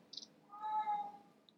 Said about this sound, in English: Did you just hear that? I did. He has, like, an asshole meow, too. Like, being at home with him all the time has made me be like, you're an annoying cat.